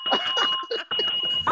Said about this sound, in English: Hit the bell.